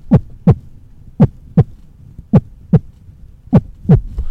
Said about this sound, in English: your enhanced vampiric senses seem to pick out the heartbeats of the few people who are sort of wandering on the walkway by the side of your building.